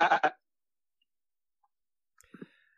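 A loud goat bleat bursts out at the very start, short and wavering, followed by near silence and a few faint, brief rustles and clicks toward the end.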